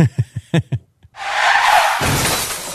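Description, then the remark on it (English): A racing car engine revs in several quick, punchy bursts, then a loud, sustained screech of squealing tires takes over and rushes on to the end. “Rev up your engines.”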